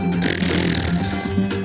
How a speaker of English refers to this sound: Now farting in 3D and smell-o-rama.